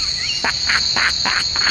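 Crickets chirp steadily with a constant high-pitched trill, joined by a series of about five brief chirp bursts in a regular rhythm; no voices, just the insect sound alone.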